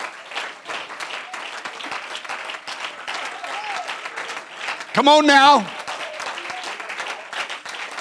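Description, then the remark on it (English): An audience claps steadily, a dense, continuous patter of many hands lasting the whole time, while a man's voice briefly calls out over it partway through. “Let's all clap our hands.”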